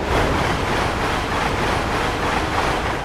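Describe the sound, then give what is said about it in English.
A Japanese high-speed bullet train rushes past, a loud, steady roar of wind and rail noise that holds at full strength for a few seconds without pause; such trains reach speeds of nearly 170 miles per hour. “In the 1990s, train engineers in Japan built incredibly fast trains, reaching speeds of nearly 170 miles per hour.”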